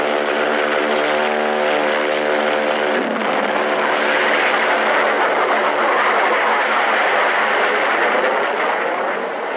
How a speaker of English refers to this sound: Crewmen attach jet containers, four to a plane. These JATO bottles are packed with flaming power. In the critical 10 seconds of takeoff, they give the kick-up of two added engines.